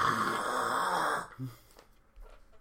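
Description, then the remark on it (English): A voice imitates loud, raspy snoring like a giant velociraptor from Jurassic Park, one long rough growling breath lasting over a second, followed by a short grunt and quieter breathy sounds. “And the next morning, they're like, you snore like you're from Jurassic Park. Like, just a guy, like a giant velociraptor.”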